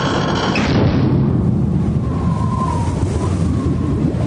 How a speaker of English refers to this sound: At that very moment, a loud creak and bang were heard on the elevator.